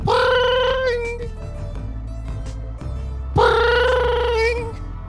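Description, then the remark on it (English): A telephone ringback tone on an outgoing phone-a-friend lifeline call in a Who Wants to Be a Millionaire-style quiz: two steady electronic ring bursts separated by a pause of a couple of seconds, clear and moderately loud over a low background hum. “Can I phone a friend?”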